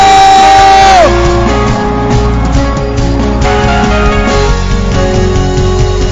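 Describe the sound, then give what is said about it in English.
A church crowd screams and cheers loudly and continuously for God, with shouts and whoops rising above a dense roar. A sustained musical tone glides downward in the first second as the noise swells. “Let God hear you as you scream, as you jump.”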